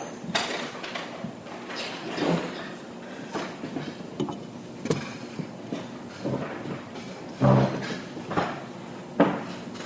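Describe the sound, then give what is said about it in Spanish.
A chair is dragged and set down, with a series of wooden knocks, scrapes and clatters and a heavier thump near the end, without any talking. “Necesito una silla acá.”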